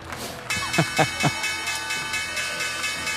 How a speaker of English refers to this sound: Guys, there's the opening bell.